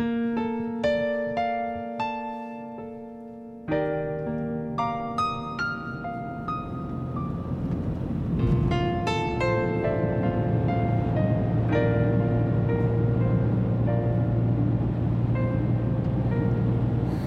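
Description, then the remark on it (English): Chiming tonal music fades into the steady, low rumble of a car interior idling in a traffic jam, a continuous drone with faint passing noise and no talking. “Our holiday episode is The Traffic Jam.”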